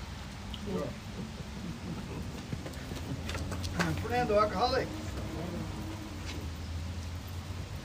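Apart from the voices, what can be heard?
heavy rain falling outside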